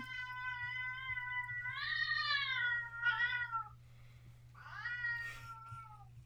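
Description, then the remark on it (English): A gigantic diabetic male cat meows loudly and insistently because it wants its dinner: several long drawn-out wails in a row with brief pauses between, over a low steady background hum. “I have a hangry diabetic cat who is gigantic and has also a very large voice.”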